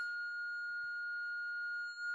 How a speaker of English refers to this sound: Now, if I keep the same volume and just crank up that frequency, you're going to hear the sound again, but it's going to be like a more high-pitched whistle.